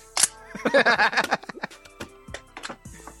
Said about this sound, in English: You're just saying that so you can click the gun.